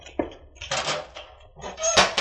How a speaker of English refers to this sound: Unlock this cage door. Be quick.